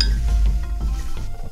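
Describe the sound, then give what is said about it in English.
A few light ceramic clinks and knocks as a tea cup is set down and bumped after tea is spilled over a desk, over a low rumbling background with no speech. “I spilled the tea.”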